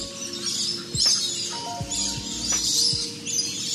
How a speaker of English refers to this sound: Loriloft is the world's largest lorry flight aviary, where you can feed lorries and lorikeets right out of your hand. The small birds with a delightfully cheery chirp.